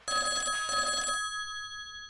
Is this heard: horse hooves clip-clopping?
no